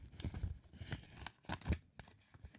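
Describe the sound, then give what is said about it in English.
A fresh sheet of paper is opened: a run of crisp rustling and tearing bursts, with a louder crinkle near the end, and no voices. “Let me open a new paper.”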